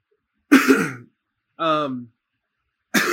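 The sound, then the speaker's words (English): A harsh throat clear and cough, followed by a brief voiced hum-like sound, then another cough starting at the end; no speech between them. “I'm sorry, I've got a little cough.”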